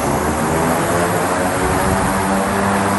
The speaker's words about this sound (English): The electric jet propulsion unit, what you would think of as the engine and propeller, is made by a sister company called MagniX, which is testing its units nearby.